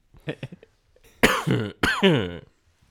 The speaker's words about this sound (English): That's not a COVID cough. I started eating these chilies that I had in my pocket.